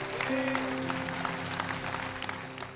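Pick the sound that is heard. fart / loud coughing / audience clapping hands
audience clapping hands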